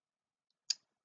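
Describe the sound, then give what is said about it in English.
A single crisp computer mouse click, short, in otherwise near-silent surroundings with no voices. “I'm not clicking there, the X.”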